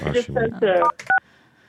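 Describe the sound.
A voice talks briefly, then a short, clear phone keypad tone beeps once near the end, followed by a faint hum of line noise.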